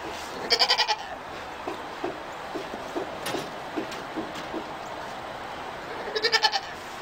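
A goat bleats twice in wavering, stuttering bursts, one at the start and one at the end, with softer scattered clicks and rustles in between and no talking.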